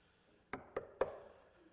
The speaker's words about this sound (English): He says, here I am. Do you need me? I'm not going to kick the door down. I'm going to knock. And if you want me to come in, you got to open the door.